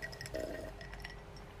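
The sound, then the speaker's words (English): Someone drinking water from a glass: a faint clink of glass, then soft sloshing and small liquid sounds, quiet, with no talking. “I gotta drink break. Wait a minute. Gotta drink this water.”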